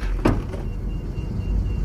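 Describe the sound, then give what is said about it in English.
An aircraft hatch is yanked open with one sharp mechanical clunk near the start, then a steady low roar like rushing air or engine drone carries on with no talking. “Pulling the hatch open now!”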